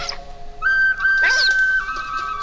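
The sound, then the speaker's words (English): An otter in the kelp gives a thin, high, whistle-like wheeze: a steady piping tone held for about a second, broken midway by a brief raspy, breathy burst. No one speaks. “Now he's wheezing. Whoa. Otter emphysema.”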